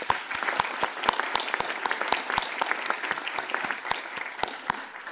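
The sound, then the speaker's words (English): An audience at New York Historical claps for the Chairman's Council members, a dense patter of many hands with sharper individual claps popping out of the mix at a fairly even level throughout. “Let's give them all a hand.”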